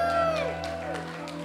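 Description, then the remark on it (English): A crowd cheers and whoops for the speaker's 8-kilo weight loss, with scattered bursts of clapping and shouts over a steady, sustained musical tone underneath. “You didn't cheer for God, but you cheered for my weight.”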